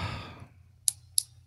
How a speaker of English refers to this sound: I'm sorry, I'm clicking my pen.